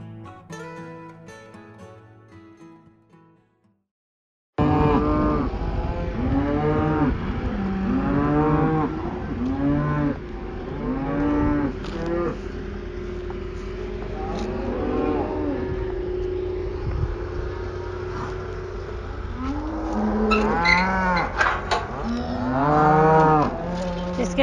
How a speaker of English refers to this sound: Cow shed. Beautiful Sunday morning.